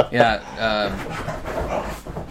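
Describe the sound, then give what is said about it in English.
Dogs play-fighting, with short harmonic growls and whines in the first second, then steady rough panting and snuffling that carries on loudly without pause. “My dog's killing each other. So fucking loud.”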